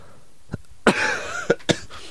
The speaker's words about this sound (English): Sorry, that's my COVID cough.